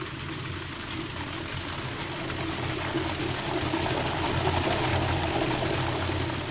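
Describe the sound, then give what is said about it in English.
A steady industrial hum of brewery machinery at the Anchor Steam Brewery in San Francisco, California, with a continuous wash of running liquid layered over low engine-like drones, holding fairly constant throughout. “This is the Anchor Steam Brewery in San Francisco, California.”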